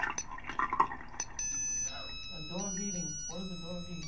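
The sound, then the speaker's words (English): Water pours and splashes for a moment, then a liquid level indicator sounds a steady electronic beeping alarm with layered high tones, continuing over the running water and a voice speaking in the background. “What is the liquid level indicating? Very good! And the water gave it away. The liquid level indicator.”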